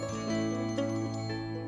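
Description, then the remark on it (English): A small silver bell on Rocky's collar jingles brightly and steadily with a shimmering, tinkling tone and a few faint extra shakes partway through; no one speaks. “That jingle sound came from a small silver bell that he wore on his collar.”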